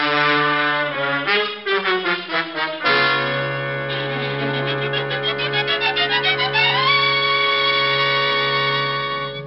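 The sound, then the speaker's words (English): A police car siren wails loudly, its tone sweeping up and down in rapid, repeated cycles before settling into a steady rising howl. No one speaks. “Get the car and step on it. Lieutenant... Yeah, the siren.”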